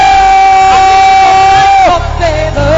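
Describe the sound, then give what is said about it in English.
A large audience shouts and roars loudly and continuously as it welcomes the ministry of Bishop Edwin Morgan Ogo, with a steady sustained high tone ringing through the noise before the roar swells and shifts near the end. “Then with a loud shout, with a scream, I want you to roar as we welcome the ministry of Bishop Edwin Morgan Ogo.”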